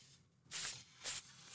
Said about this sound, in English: I don't know about you, but I would put a little microphone near the sizzle. It's sizzling. Oh, ready?